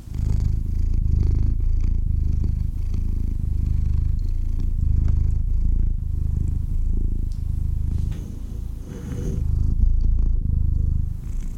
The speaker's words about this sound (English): Come here, Mr. B, come say bye to everyone. He's like, I do not care. Told Mr. B up to the mic, he can give you some purrs.